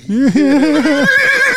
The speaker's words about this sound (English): Hey, Karen. There's my beautiful horse. Hey, Karen. It's my horse, Karen. This girl. Girl, Karen. Yeah, she's beautiful with beautiful mane.